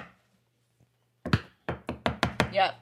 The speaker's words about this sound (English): And well, she hears. Because the knock happens again.